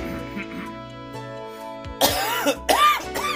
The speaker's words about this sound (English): Yes, that cough is going into the final bit.